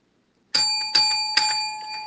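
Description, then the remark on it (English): A bell rings out three times in quick, even succession, each strike bright and metallic, with the tone sustaining and blending into a lingering ring. No voices are heard. “The bell has been rung.”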